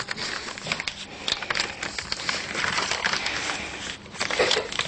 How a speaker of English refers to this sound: I could make it into a paper aeroplane, couldn't I? Shall I try that? It's a long time since I've made a paper aeroplane.